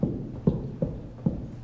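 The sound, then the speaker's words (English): Feet stomp on a floor in a steady alternating right-left rhythm during an exercise routine, five dull thuds about half a second apart, with no voices. “So you might need to elevate the hoop a little bit off your thighs, but just stomp your feet right and left, left to right.”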